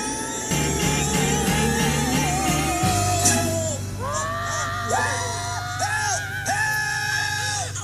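A rock song, featured in the film Look Who's Talking, with a powerful, raw female vocal wailing and screaming soulfully over a steady, driving bass line, the voice bending and sustaining long, strained notes loudly up front.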